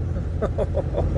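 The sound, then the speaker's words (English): A steady, loud low rumble of a car cruising at highway speed, heard from inside the cabin as the driver crosses four lanes of traffic to reach an exit, with a few faint tonal murmurs drifting over the road noise. “I literally just crossed over four lanes of traffic to get to my exit, and I got to it just in time.”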